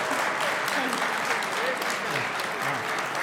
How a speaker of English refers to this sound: But let's give a big round of applause to our awesome Hearthstone panel.